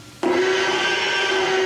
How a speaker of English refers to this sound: So every time the T-Rex screams in the first Jurassic Park, that baby elephant is part of the major roar. Here it is by itself, the little cute baby elephant and the high-pitched scream that it made.